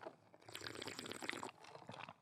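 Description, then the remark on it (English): A single sip of a pumpkin spice iced latte, a wet, bubbly slurp with a faint thin whistle through it, swelling for about a second before trailing off into softer gurgles. “So I'm going to take a sip of my pumpkin spice iced latte.”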